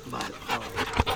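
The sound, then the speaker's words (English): A large dog, one of two big dogs (an old German shepherd and a golden retriever), pants in quick, rhythmic breaths while greeting a visitor at a house, with a faint snuffle near the end; no one speaks. “She's got two big dogs with the run of the neighborhood, an old German shepherd named Maisie, and a big golden retriever.”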